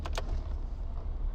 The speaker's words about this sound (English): Did you just stall? Well, it's more the car than me, if I'm honest.